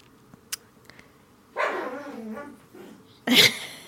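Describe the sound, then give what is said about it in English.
A dog, Mikey, chasing its own tail, letting out an excited, wavering whine that breaks into yips, then one loud sharp bark at the end, after a few faint clicks. Nobody talks. “Yeah, there was one point this weekend where they were both just chasing their own genitalia around in little circles.”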